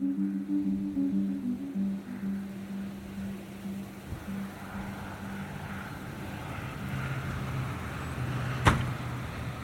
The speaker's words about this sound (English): That was the door that you just heard on the third house. Again, I'm not gonna go inside. I'm just gonna look.